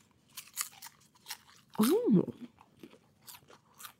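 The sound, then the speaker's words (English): Crunchy popcorn chewed, with a steady run of sharp crunches throughout and a brief voiced hum or murmur in the middle. “Ooh. Crunchy.”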